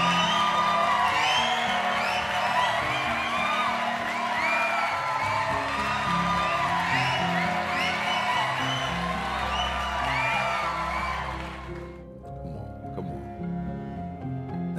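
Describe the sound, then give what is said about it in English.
A loud crowd cheers and whoops continuously for about twelve seconds, giving a round of applause to all the Haitians, a dense wall of excited voices with applause, then abruptly cuts to quieter background sound. “Give a round of applause to all the Haitians.”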